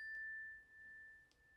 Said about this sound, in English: So, we're going to start with three cleansing chimes.